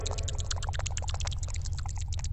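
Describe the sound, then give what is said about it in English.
Noisy, sloppy drinking: a rapid, continuous stream of wet splashes and slurps as liquid pours into a mouth over a steady low rumble, with no voices. “Look, I drink differently than you. Don't judge. I don't come into your home and say, why are you just pouring it quietly into your mouth?”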